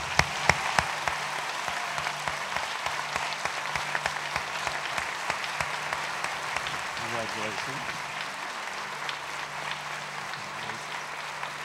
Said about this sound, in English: And each one of these girls, I think, deserves a very, very hard round of applause.